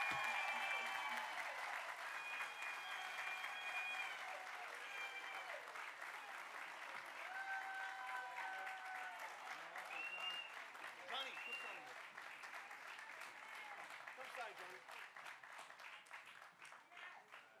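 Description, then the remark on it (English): An audience applauds steadily throughout as a ceremonial $15,000 college check is presented, dense clapping with cheers and whoops rising above it, loud at first and slowly tapering off toward the end. “Round of applause.”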